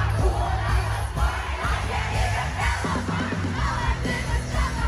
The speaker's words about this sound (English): And that's why everyone was, like, yelling really loudly. But it was so cool. My favorite part of this song is when they say, and I can't even parallel park, because the whole crowd just, like, screamed it.